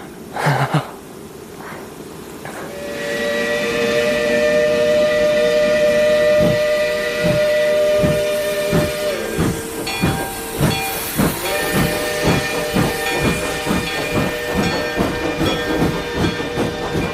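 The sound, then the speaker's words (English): A steam train's whistle wails in long sustained tones while steam hisses steadily, then rhythmic chuffing builds as a special train sent by the railroad company pulls away from a small railroad station, loud with no voices. “A special train sent by the railroad company made a swift, unbroken journey away from the land of coal, iron, clank, and roar.”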